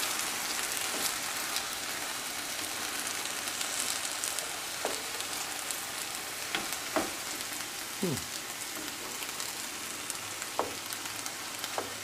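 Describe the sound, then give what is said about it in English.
Two packages of healthy noodles with rotisserie chicken and frozen vegetables fry in a pan with a steady, even sizzle, broken now and then by sharp pops and a few light utensil clicks. No one speaks. “So, this is like, I didn't make it in the right pan, but you guys get the gist.”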